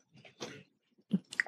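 Wet mouth sounds of someone sipping water: a short slurp followed by a couple of quick gulping, swallowing noises, fairly quiet with brief pauses between them.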